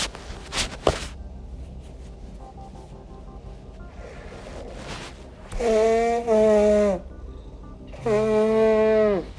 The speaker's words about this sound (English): Ooh, y'all, wait a minute. I need to blow my nose.